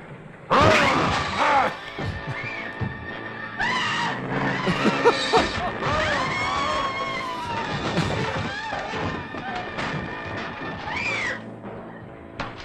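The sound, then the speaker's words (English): Loud, repeated crashing blows as a monster beats down a door, mixed with shrill, wavering roars and screeches that continue almost without pause. “Monster's beating down the door.”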